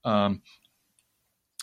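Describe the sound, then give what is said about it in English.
A short burst of voice gives way to quiet, broken by a couple of small, sharp computer mouse clicks, one faint in the middle and a crisper one right at the end. “I could actually find it here by clicking on this.”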